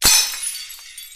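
A single sharp, loud crash of glass shattering, followed by a second or so of tinkling shards scattering and settling. No voices.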